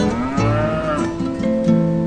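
A cow moos loudly and steadily, its deep drawn-out lowing shifting pitch a few times across the whole stretch, with no talking.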